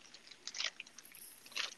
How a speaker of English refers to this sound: Is one of you shaking a can of spray paint? Sounds like it. At least it's not peanuts. Sorry, I was eating a marshmallow. Or s'mores.